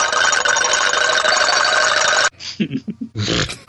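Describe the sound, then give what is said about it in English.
A dense wall of overlapping telephone ringing in an office, loud and continuous, stops abruptly after about two seconds and gives way to short, choppy bursts of other sound. “just constant ringing”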